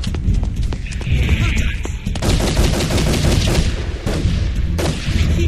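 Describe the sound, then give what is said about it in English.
Loud, sustained gunfire: rapid overlapping bursts of sharp, cracking shots, like automatic weapons, firing almost continuously with only brief pauses throughout. “Then keep shooting!”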